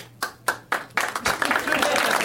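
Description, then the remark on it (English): A few isolated hand claps ring out, then a small group, about a third of the crowd, joins in with thin, scattered applause that builds into a brief patter of clapping. “You almost got a third of the crowd on board with that. I refuse to applaud.”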